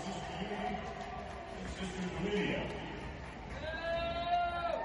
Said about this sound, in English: Oh, dude. You can hear boos.